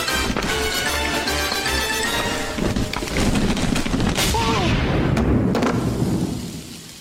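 A single sharp, loud gunshot cracks out partway through a cartoon, as a gargoyle playing with a lady's gun taken from her purse shoots her by accident, set against a busy cartoon soundtrack of music and effects that tapers off toward the end.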